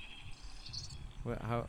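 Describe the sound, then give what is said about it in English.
Birds chirping softly in the background, a steady high-pitched trilling that carries throughout, with a person's voice briefly starting up near the end. “Just have the birds in the background.”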